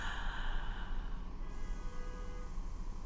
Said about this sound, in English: Let us take 3 deep breaths. 1 breath, breathing in positive.